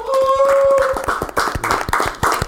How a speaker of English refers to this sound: So I just want to give you a round of applause here